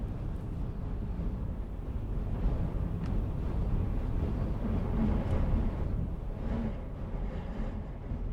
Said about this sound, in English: As we enter the second episode of Stories from the Atlantic, a small storm is raging in the southwest part of Iceland.